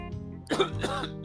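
A rough bout of throat clearing that breaks into a couple of short coughs, loud and right against the microphone, with no talking.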